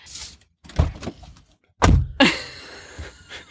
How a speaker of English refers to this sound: let's do it in the car. And we could have those like little soundscapes things where we like open, shut the car door.